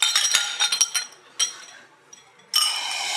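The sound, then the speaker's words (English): Glasses clink together in a toast, a quick flurry of bright chimes followed by a pause and then a louder ringing clink that lingers to the end. “So I'd like to make a cheers with our Fat Club motto.”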